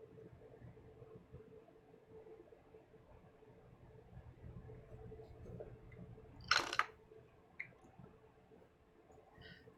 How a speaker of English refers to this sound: Drink three times. Now you can, of course, you can drink later. I also drink a second time.